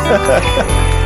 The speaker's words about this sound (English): And those are real ass jingle bells too. He didn't just like get a sample. He waited until he got some actual damn sleigh bells for it.